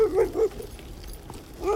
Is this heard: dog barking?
yes